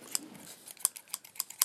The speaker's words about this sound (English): Can I cut your bangs? Yeah, cut your bangs out and then make you have a fringe.